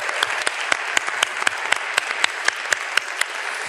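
A crowd applauds a guest for a few seconds, many hands clapping at once in a dense, continuous patter with sharper individual claps popping through, no voices.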